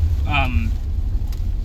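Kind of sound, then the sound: vehicle, car interior noise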